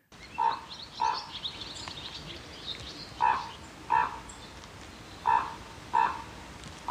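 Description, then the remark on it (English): Harsh, croaking raven calls come in three spaced pairs, six hoarse mid-pitched notes in all, each pair a quick double call, moderately loud over a faint steady background hiss, with no one talking. “I think this is a raven.”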